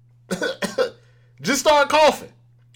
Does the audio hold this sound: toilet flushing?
no